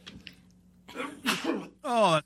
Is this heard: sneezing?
yes